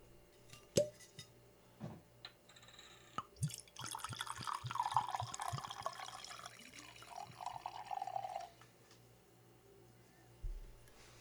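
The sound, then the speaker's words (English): A few sharp clicks and taps as the bottle is opened, then sake of 15% alcohol poured into a glass in a steady, gurgling stream for about five seconds, its tone rising slightly as the glass fills, followed by a soft clink. “Well, let's open it up and get it in our glass.”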